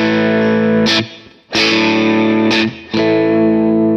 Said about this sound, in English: that's, again, just a preset that's just an AC30 preset that it ships with